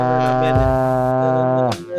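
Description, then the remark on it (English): A person's voice imitates a foghorn with a loud, sustained low blast lasting a couple of seconds, rich and buzzy, then cutting off with a brief breathy trailing sound. “just fucking made a foghorn in his blank.”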